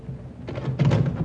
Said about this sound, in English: I'll get the door, Mom.